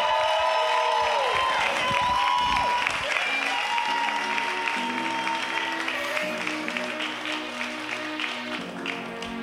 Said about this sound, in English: Like I said, if you feel like stomping your feet, do that. Clapping your hands, do that. Making some noise, do that.